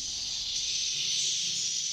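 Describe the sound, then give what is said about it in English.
A dense, unbroken chorus of high-pitched swiftlet cries in a small village in Malaysia blends into a steady, hissing shimmer that holds an even loudness throughout, with no voices. “More specifically, the cries of swiftlets.”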